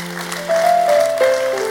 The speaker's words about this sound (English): Okay, so now give the Lord a clap.